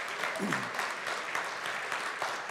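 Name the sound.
audience round of applause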